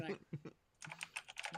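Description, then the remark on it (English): Rapid keyboard keys clacking in quick irregular bursts, fairly loud, with a brief pause before the typing picks back up. “Can you put like a blanket over those keyboards so it doesn't fucking clickety clackety clickety?”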